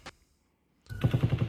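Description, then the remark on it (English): A single sharp pop, then a brief silence, followed by loud, sustained automatic gunfire in Las Vegas recorded on a cell phone: a rapid, evenly spaced stream of bursts sounding like a helicopter, slowing down at the end, with a harsh, lo-fi quality and no talking. “It's audio from a cell phone. Sounds like a helicopter, but it's actually gunfire.”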